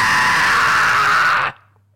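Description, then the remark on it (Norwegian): A single loud, sustained human scream, high and strained, held steadily for about a second and a half before cutting off abruptly into near silence; the scream is used as a signal to go back and redo a recording take. “men når vi tok opp og vi klippet, og så brukte vi det skriket der hver gang vi følte at vi måtte gå tilbake og gjøre et nytt opptak.”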